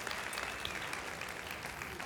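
Steady applause from an audience giving God a round of applause because the Maranatha School of Ministry and chapel side of the building has passed everything, a dense crackle of many hands clapping at once, sustained at an even, fairly loud level with no voices rising above it.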